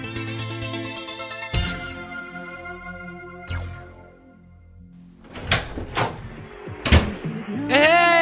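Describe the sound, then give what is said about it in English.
A door is unlocked with a copied key and opened: a few sharp metallic clicks and a knock-like thud, after sustained music fades down. The music swells back in at the end. “Don't you knock? Dude, this is my home away from home. Come on, plus I had a key made.”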